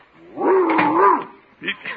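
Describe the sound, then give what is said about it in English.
A 140-pound Great Dane lets out a long, deep, rumbling growl-bark that swells and wavers for about a second, followed by two short, rough barks. “That 140-pound Great Dane could knock down the door if he took a run at it.”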